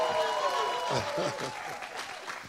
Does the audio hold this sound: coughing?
no